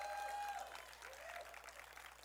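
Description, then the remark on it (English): A church audience claps steadily in a dense, continuous burst of applause while shouting amen, with a few voices calling out faintly under the clapping, which eases slightly after the first half second. “If you're a church ready to be that kind of church, let me hear you clap and shout amen.”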